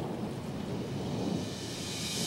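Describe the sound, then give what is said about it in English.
Steady rainfall sound effects in a song hiss across the whole stretch, with a low rumble of thunder rolling underneath, fairly loud and continuous with no voices. “Bit of rain sound effects there for”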